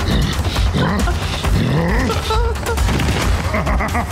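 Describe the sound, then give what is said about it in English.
A deep, gravelly roar in the voice of the Hulk, with grunting growls, loud and rough throughout, rising and falling in pitch over a few seconds with harsh, noisy bursts underneath, played by an app to cheer on a jogger. “You can now have the Hulk grunt at you when you take a jog.”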